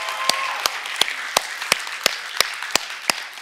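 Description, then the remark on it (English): An audience applauds the PAC family, with a steady wash of clapping and sharp, evenly spaced claps standing out in a quick rhythm about three times a second. There is no talking. “Can we give them another round of applause?”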